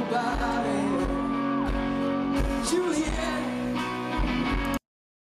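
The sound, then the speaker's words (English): A girl lets out a high, drawn-out scream over loud live music and a noisy concert crowd at a live show on the Isle of Wight, her voice cutting through the din before everything stops abruptly. “Those, you know, that girl screaming, everybody's had that person at a concert.”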